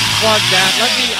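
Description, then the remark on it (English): A short, loud burst of a chainsaw sound effect played by a computer when a USB cable is plugged into a port: a steady buzzing, hissy roar with a wavering engine-like pitch, running about a second without pause. “Okay, so that little one has the chainsaw for my computer.”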